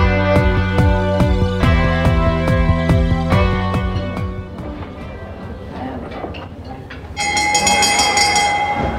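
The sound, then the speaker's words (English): A dinner bell sound effect rings out loudly with no voices: a run of quick metallic strikes over sustained ringing tones, ending on a bright held tone. “So that's the dinner bell, which means it's time for our dinner party questions.”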